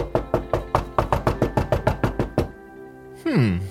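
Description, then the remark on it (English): A quick, steady run of about fifteen sharp knocks on a door, fairly loud, stopping abruptly and followed by a brief sliding, descending tone. “I wonder who else could be at the door.”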